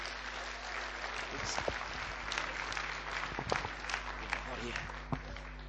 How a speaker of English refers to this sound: Someone give the Lord a clap, eh? Yeah?